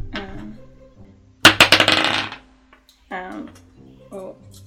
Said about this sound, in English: Advantage is proficiency, right? No, it's roll it twice. 2 dice.